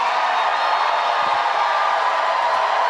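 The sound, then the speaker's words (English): A boisterous crowd at a Bernie Sanders rally cheers in one loud, continuous roar, a dense wash of many voices that holds steady without pause from start to finish. “This was a boisterous crowd, by the way.”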